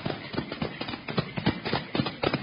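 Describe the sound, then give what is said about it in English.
Steady, rhythmic clip-clop of two horses' hooves on hard ground at a trot, ridden by Perry and Slade, moderately loud, with no talking over them. “Now, both of you get off those horses.”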